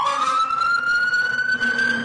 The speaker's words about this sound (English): Fire engine. That could be you driving that fire engine.